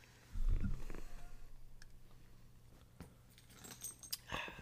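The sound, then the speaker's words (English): Keys jangle and clink in a few brief, bright metallic bursts after a low thump near the start; no one speaks. “Yeah, but I don't think your keys have been in places that I should be drinking.”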